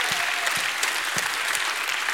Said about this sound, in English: Come on, give God another hand clap and a shout of praise.